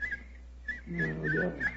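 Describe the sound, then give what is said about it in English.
A person whistles short, high, chirping phrases in imitation of a nightingale's song, whistling for help at night in Sussex, fairly quiet, with a low voiced hum briefly underneath. “My whistle is that of a nightingale, a song unheard in Sussex at this time of the year.”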